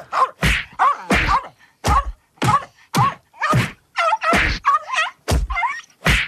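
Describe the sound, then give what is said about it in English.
About a dozen heavy punching thuds, a recorded sound effect, land in quick, uneven succession, each loud, with pained grunts and groans squeezed between the blows. “Who are you punching there?”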